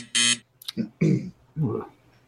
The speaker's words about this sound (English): At 8 o'clock, there's a buzz at your door.